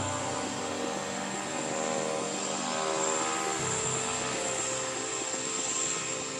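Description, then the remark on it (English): An aircraft turbine engine is spun up and starts before a 5:13 a.m. departure carrying crated dogs, a steady loud roar with a high-pitched whine on top, holding fairly even and swelling slightly. No one speaks. “Once the door is shut, and once I spin the turbine and the engine starts, they get very, very quiet.”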